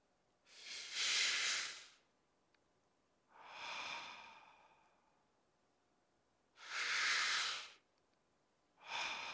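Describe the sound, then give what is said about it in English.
A voice imitates slow, deep breathing, as if breathing in an aroma: two long airy inhales, each followed by a softer exhale, in a steady rhythm with no talking. The breaths are broad and hissy, fairly loud against silence. “He's breathing in the aroma.”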